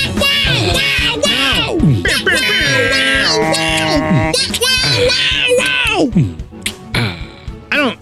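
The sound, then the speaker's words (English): Several voices imitate an air horn at once, a loud, continuous jumble of blaring, buzzy tones with sliding pitch, lasting several seconds before thinning out into scattered, quieter hoots. “You guys need to commit to your vocal air horn noises more.”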